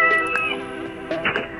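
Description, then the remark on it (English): A cat meows twice in quick succession, moderately loud, over a steady low mechanical hum; no one is speaking. “Also, my cat wants to say hi”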